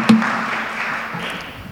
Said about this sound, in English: Well, thank y'all. You give them a round of applause.